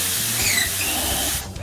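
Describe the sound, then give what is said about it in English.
A skunk's spray, shot from its anal scent glands, lets out a loud, steady hiss, a rush of sprayed liquid that lasts about a second and a half before cutting off abruptly. “Oh, those anal scent glands with taut muscles that allow them to accurately shoot their spray up to 10 feet.”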